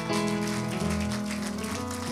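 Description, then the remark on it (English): A church audience gives the Lord a hand clap of praise, clapping together in a steady, dense wash of applause that holds at an even loudness throughout, with a sustained low musical tone, like an organ, underneath. “Would you give the Lord a hand clap of praise this afternoon?”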